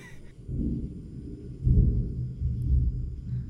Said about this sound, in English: Cue the thunder.